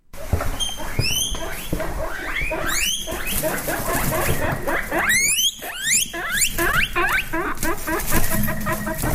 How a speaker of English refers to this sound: It's either a guinea pig, a turkey, a duck, or a mole. Which one is it? If you remember the pet shops, the guinea pig.